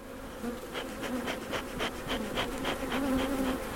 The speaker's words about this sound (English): These bees are being good today, and I haven't been stung. And I'm just opening up their homes like this.